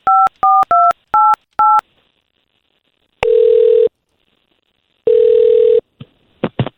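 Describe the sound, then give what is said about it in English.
A telephone number is dialed for an on-air radio call, with five quick, evenly spaced touch-tone beeps, followed by two long ringback tones separated by a pause, then a few faint clicks as the line connects. “Nothing that you want to tell us before we get her on the phone.”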